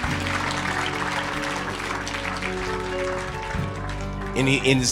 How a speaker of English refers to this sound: Come on, let's give the Lord a big clap and a shout.